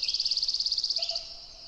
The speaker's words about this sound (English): A common raven, although not their most common call.